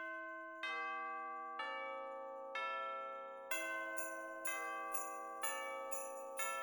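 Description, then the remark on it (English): The little bell on the top of Bojangles's one rings in a steady rhythm, about seven clear strikes roughly a second apart, each bright tone lingering and fading before the next, alone with no voices. “Also, Bojangles has a little bell on the top of his of his one. Jingles.”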